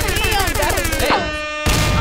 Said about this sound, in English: Ooh, wait, damn. Gunshots for that.